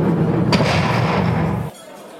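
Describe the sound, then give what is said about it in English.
A door is slammed hard by a woman who just walked in, one sharp, loud bang, followed by a low rumbling resonance that carries on for about a second before cutting off abruptly into near silence. “The podcast picture today is someone else who walked in just now and slammed the door behind her very loudly.”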